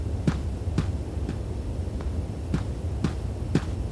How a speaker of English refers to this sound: can you get that off the printer?